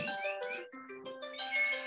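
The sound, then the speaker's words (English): A set alarm rings out while a pie is being made, a bright electronic melody, a run of steady, buzzy tones stepping between higher and lower pitches, playing continuously and fairly loud with no talking over it. “And I hear something ringing.”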